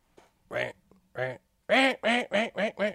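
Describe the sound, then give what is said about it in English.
A duck call blown by a 10-year-old girl from Delaware in a quacking sequence: a couple of softer tentative quacks, then five loud, rapid, descending quacks, with no talking over them. “10-year-old little girl from Delaware can blow a duck call.”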